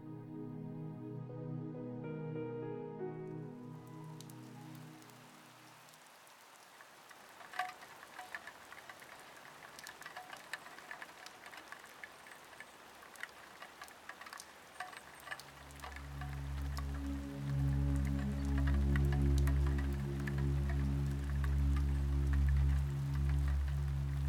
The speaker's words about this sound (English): Delicate rain pattering on the glass gently eases Lily into wakefulness.